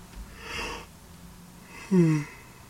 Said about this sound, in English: Thanks for making me yawn.